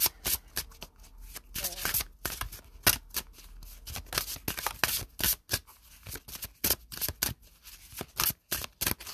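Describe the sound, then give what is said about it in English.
A deck of cards being shuffled, with rapid, uneven bursts of crisp riffling and slapping that come in quick clusters with brief pauses between them. “All of these cards. I feel like they just messy shuffling.”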